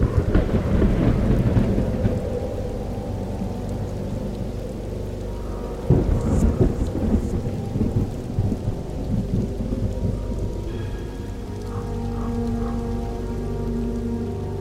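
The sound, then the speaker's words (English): Steady, hissing rain pours throughout, with deep rolling thunder rumbling loudly at the start and cracking again about midway before fading back under the downpour. No voices. “Somewhere along the 550-mile planned flight path, the plane disappeared in a rainstorm.”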